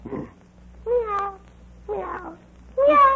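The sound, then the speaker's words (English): A human voice imitating a cat, producing three or four drawn-out, wavering meows in quick succession, fairly loud with short pauses between them. “Now what are you doing? I'm taking a cat nap.”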